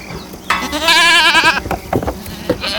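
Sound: goats bleating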